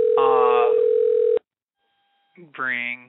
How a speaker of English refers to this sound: Ring. Yeah, we're ringing. Our guest better answer. Because I'm getting a little worried here.